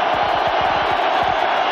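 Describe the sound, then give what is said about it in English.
A loud, steady roar of a stadium crowd at a football game, dense and unbroken, with shouts and yells woven through the continuous wash of noise, as the crowd tries to make things as difficult as possible for Colorado quarterback Cordell Stewart. “Crowd trying to make it as difficult as possible down there for Stewart.”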